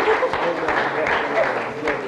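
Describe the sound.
An audience applauds steadily for about two seconds, a dense, even wash of many hands clapping, with some voices mixed in beneath it.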